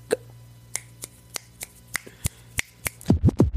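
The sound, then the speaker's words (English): A thin applause sound effect that comes out as about ten sharp, evenly spaced taps or slaps, like a lone pair of hands, followed by a few quick squeaky rising-and-falling tones at the end. “No, because that was supposed to sound like a round of applause. But why it sound like someone was tapping ass instead?”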